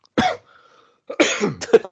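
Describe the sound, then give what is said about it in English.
A single sharp cough, then after a brief pause a harsher burst of several rapid coughs, loud, with no talking around them. “Get that cough button pressed.”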